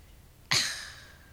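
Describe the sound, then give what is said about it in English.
A person imitates the dramatic breath that actors in an afternoon soap-opera series make after finishing a sentence: one sudden, loud, airy exhale that trails off over about a second, with no talking. “Actors on there, they do this breathing that gives away that it's acting.”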